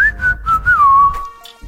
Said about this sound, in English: I can't really whistle, so I'm not... Bad.